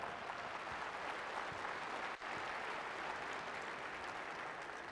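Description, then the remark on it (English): Sustained applause from an audience, many hands clapping in a dense, steady wash for several seconds with only a brief dip midway, fairly loud. “Yeah, give a round of applause to yourself.”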